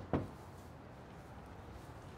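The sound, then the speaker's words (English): A single dull, fairly sharp knock on the door of a nonprofit's resource center, then quiet, steady low background noise with no voices. “Gonna knock to see if the answers.”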